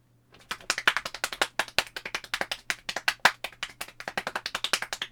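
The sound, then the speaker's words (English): Rapid hand clapping by a single person, a steady stream of sharp claps, roughly eight to ten per second, continuing for about five seconds with no talking. “He's clapping pretty fast.”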